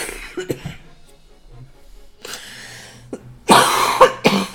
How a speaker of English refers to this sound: Stop stalling with your coughs.